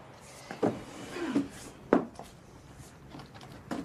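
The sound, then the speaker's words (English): A wooden bureau drawer slides open with a few scraping, knocking bumps, followed by quieter rummaging clatters inside it; no voices. “I saw it only the other day in the drawer of the bureau. Perhaps you should check that it is still there.”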